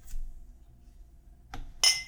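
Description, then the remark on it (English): Two glasses clink together in a toast: a soft tap, then a brighter ringing clink that hangs briefly. No voices. “Cheers.”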